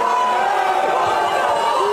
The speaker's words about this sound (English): Now he's getting booed, and it's nothing but children all around. And some of these children literally grab the guy and are trying to take him away from her.